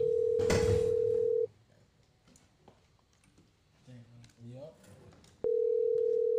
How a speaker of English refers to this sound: The phone is ringing. You know, I get the phone.